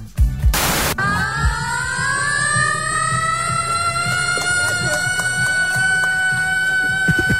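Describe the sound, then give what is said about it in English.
A man imitates a siren using only his voice at a Hobart Hurricanes match in Launceston: after a short burst of noise, a loud, harsh, sustained wail holds high and slowly climbs in pitch over a low rumbling background. “That is a bloke with just his larynx. It sounds a bit like nails down a chalkboard.”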